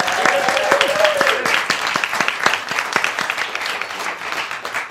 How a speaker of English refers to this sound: Let's give them all a big round of applause to get us started.